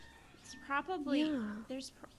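A chicken clucks in a short burst of warbling, squawky calls that rise and fall in pitch, then trails off with a final brief cluck.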